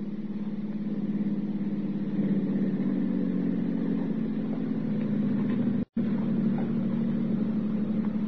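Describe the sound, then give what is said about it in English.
A car with its lights on comes around a corner, its engine humming steadily with a low, droning rumble that swells slightly as it draws nearer and slows down, broken by a very brief cut in the sound near the end. “No, but there's a car down there.”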